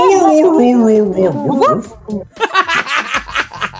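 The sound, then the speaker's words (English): A person's voice imitates the tortured howling of a beaten Mightyena lying wounded on the ground, a long wavering tone sliding downward, then breaking into short, breathy whimpering yelps, fairly loud. “tortured howlings of the mighty Yina”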